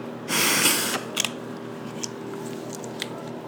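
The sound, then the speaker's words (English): A single puff from an asthma inhaler: a sharp, airy spray hiss lasting about half a second, followed by a few faint clicks and soft handling noises. “How was that puff of the inhaler?”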